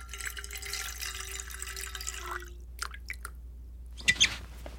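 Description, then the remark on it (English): Water from the tank in Hazel's office is poured into a container, to be boiled, for about two and a half seconds with a steady splashing rush, then stops, followed by a few light drips and small clinks. No one speaks. “The next step is to pour in the water. I'll do it now.”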